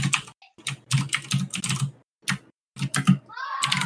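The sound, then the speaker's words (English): Rapid, clattering keystrokes on a loud computer keyboard, coming in quick bursts with short pauses between, fairly prominent. “I type on my loud ass keyboard.”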